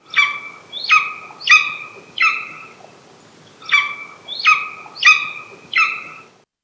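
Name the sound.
golden eagle call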